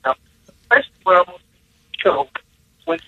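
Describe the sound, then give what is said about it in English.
A voice over a phone line breaks up into short choppy fragments, separated by abrupt dropouts into silence, so the speech sounds thin and garbled. “You're really cutting in and out.”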